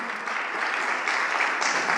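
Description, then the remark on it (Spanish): Steady, dense applause from a crowd during a sermon, given to the Lord, a continuous wash of many hands clapping at even loudness for about two seconds with no voices over it. “Le puedes dar un fuerte aplauso al Señor.”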